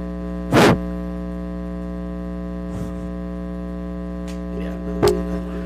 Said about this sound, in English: Whoa. There was so much feedback right there. Reverb.